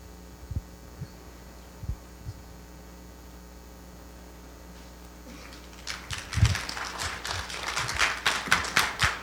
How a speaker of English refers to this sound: Oh, sure, you're clapping now.